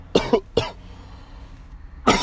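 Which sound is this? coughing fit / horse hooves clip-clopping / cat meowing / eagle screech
coughing fit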